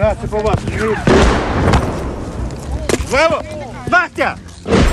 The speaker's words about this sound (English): And more shells landed outside. So at that point, we were really coming under semi-serious shelling and we decided to just stay put until we were completely sure that the attack was over.